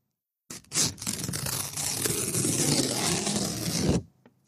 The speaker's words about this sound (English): Here, let's do a paper shredding. If you've ever seen the Langoliers, then you know what you're about to hear.